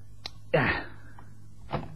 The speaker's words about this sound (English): That's a neat trick, putting that chair in my way to fall over in the dark.